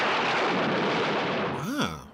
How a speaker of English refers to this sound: Was that the sound effect of Tex Tucker's gun there?